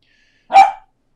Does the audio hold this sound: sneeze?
no